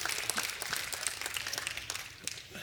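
A crowd applauds steadily, many hands clapping in a dense, continuous patter that holds at a moderate, even level throughout without any voices.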